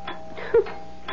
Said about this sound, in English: Why does the back doorbell always ring when you're at the front? Coming!